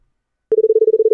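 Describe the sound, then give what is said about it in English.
After a moment of silence, a man does a rapid tongue-trilled buzz, mimicking a European, international telephone ring. It's a steady, fluttering tone, loud, with no speech. “This is a whole thing with people doing their tongue to the phone, the European phone sounds, the international phone sounds.”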